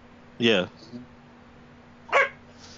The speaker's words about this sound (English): Hey, bro, you gonna have to go, man, with all that barking and stuff.